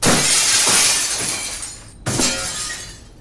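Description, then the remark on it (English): Loud glass shattering as someone runs through it, a broad, bright crash with tinkling shards scattering down, followed about two seconds later by a second smashing burst of breaking glass. “Regardless of where the glass came from, why did he choose new glass to run through?”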